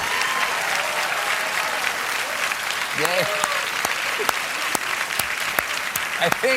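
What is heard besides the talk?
audience applause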